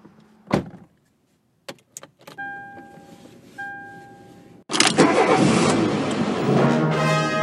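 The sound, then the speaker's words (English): A car door thuds shut, then a few clicks and a chiming tone, followed by an engine cranking and roaring to life, settling into a steady, loud idle. “Hello, we're in the car right now.”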